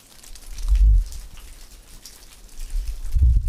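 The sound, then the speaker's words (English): Steady rain falls with a dense hiss of drops, broken by two deep low rumbles that swell and fade, like gusts or thunder underneath. No voices. “The first phase is one we all know well, and that would be rain, or more scientifically called precipitation.”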